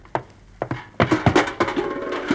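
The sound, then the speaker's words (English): Someone knocks at a door: one sharp rap, then a quick pair, followed by a loud, rapid flurry of wooden knocks that trails off. No one speaks. “There's the door.”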